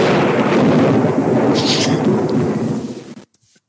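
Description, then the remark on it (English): The Castle Thunder stock sound effect: a loud, rolling crack of thunder rumbles heavily for about three seconds, deep and booming, then cuts off abruptly into silence. “Castle Thunder all year.”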